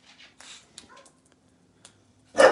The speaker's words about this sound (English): The dog says hi as well.